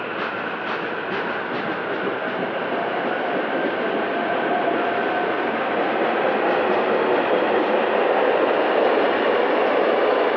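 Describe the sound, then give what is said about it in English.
A commuter train to Philadelphia roars past in a dark tunnel, a loud, steady rumble with rattling wheels and a faint high whine, filling the whole stretch without any voices. “The train's coming, so that's loud.”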